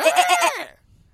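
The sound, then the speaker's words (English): A person imitates a goat with one loud, close bleat that wavers rapidly in pitch for just over half a second, then cuts off into near silence. “Oh, that's me trying to be a goat.”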